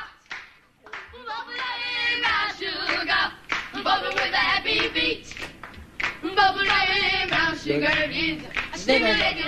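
Sharp hand claps land in a steady rhythm on beats one and three, keeping time with a beat beneath lively, tonal singing or music that fills the foreground at a moderate volume.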